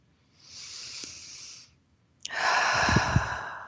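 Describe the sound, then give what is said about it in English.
A slow, deep breath: a long airy inhale, a brief pause, then a fuller, louder breathy exhale. No one speaks. “Just breathing with it.”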